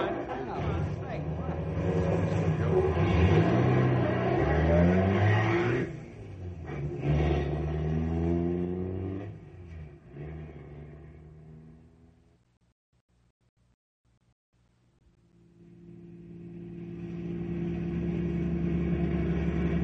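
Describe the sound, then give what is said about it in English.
A car engine rumbles and revs loudly, its pitch climbing and falling, as the car drives off and fades away to near silence before another steady engine drone rises again. “Okay, come on, let's go. Get my car.”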